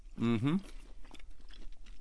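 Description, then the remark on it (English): A short hummed 'mm' from a voice, followed by soft chewing of a bite of New York steak, a chewier, beefier cut, with faint wet, squishy mouth sounds continuing steadily at low volume. “So the next cut we're going to be trying is a New York steak.”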